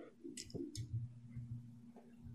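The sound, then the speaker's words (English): A player rolls the rest of their dice for a grapple in a game, the dice clattering briefly on a table: a couple of quick, light rattling clicks, fairly quiet, over a steady low background hum. “He had a lot of dice to roll against you, but those did not help him.”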